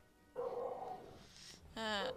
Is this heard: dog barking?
yes